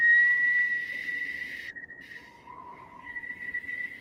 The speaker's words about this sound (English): you are pulled out of your reverie by a whistle.